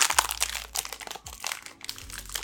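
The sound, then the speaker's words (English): Crinkly plastic packaging rustles and crackles continuously as an Oreo cookie package is torn open, with bursts of sharp crunching and a few low thumps underneath, and no talking. “So I'm gonna open up this baby.”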